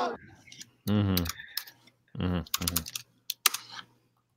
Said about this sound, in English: I can hear you typing